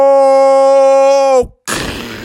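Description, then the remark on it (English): A rocket-boosted airplane blasting off: a loud, steady buzzing engine tone holds for over a second, cuts out briefly, then erupts into a harsh, roaring rush of noise. “And all of a sudden, the rocket boosters turned on. The airplane started blasting off”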